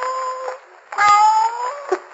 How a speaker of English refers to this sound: What was that? It sounded like a cat. It came from that wine vat.